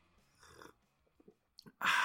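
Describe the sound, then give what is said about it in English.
Someone sips coffee: soft mouth and lip sounds, a few faint clicks and gulps, then a sudden louder, airy slurp or exhale at the very end. No one speaks. “Hold on, let me take a sip here.”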